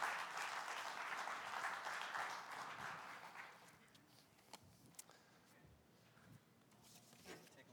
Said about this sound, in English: I'm going to ask them to come up at this time, and so it doesn't seem awkward to them. Will you just applaud as they're coming, even though you don't know who they are or what they are going to say?